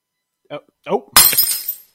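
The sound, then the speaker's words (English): A brief vocal sound or two, then a sudden, loud crash of glass shattering, with scattered tinkling shards settling for under a second afterward. “The glass was free, and I didn't mean to. I can clean this up.”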